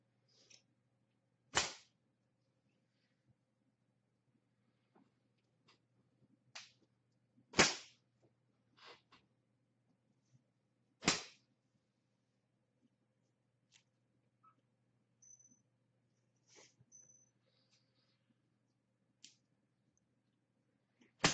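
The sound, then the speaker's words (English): Sharp whip cracks land at irregular intervals, three loud, snapping strikes among several fainter smacks, with no talking and only a low steady hum in the quiet gaps between them. “Say thank you when I whip you.”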